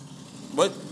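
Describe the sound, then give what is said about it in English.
A car passes by, a steady low engine rumble rising briefly into a louder whoosh before settling back. “Sorry, the car's going by.”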